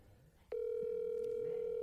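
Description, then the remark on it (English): An incoming phone call from a fan sounds: a loud, steady electronic tone cuts in abruptly after a moment of quiet and holds at one mid pitch without a break to the end. “We got a ring.”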